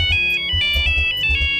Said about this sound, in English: Well, I had that ringtone for my Nokia phone.